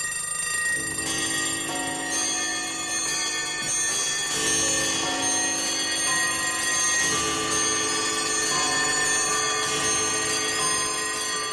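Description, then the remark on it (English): A dense chorus of alarm clocks and bells rings loudly and continuously at the beginning of a song, their overlapping metallic jangles layered over steady ticking, with no voices. “That alarm clock beginning in the middle of the night, you don't want to hear that.”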